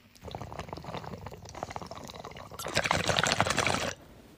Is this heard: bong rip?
yes